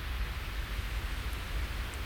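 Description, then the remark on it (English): A steady, even hiss of white noise called Bishop's Weasel, a single vintage sound from the Milesburg distillery, fills the whole recording at a constant moderate level, with a soft low rumble underneath and no voices or other sounds. “Today's white noise is Bishop's Weasel, a single vintage sound from the popular Milesburg distillery.”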